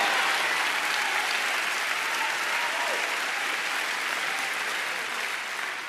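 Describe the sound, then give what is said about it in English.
Steady, dense clapping from a large church audience, a sustained wash of many hands applauding at once that holds loud and even, tapering slightly at the end. “Half of you might be clapping and the other half might not be because you haven't learned how to hear God obey yet.”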